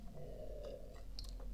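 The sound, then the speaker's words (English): Someone takes a quiet sip of Dr Pepper soda: a few soft, wet mouth clicks and a brief slurp over a low, steady background hum, with no talking. “Oh, I should get a little sip here myself, excuse me.”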